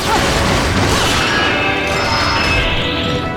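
A loud, dense crashing and clattering of splintering material, sustained for a few seconds with rattling debris, like a door being smashed apart in a video game.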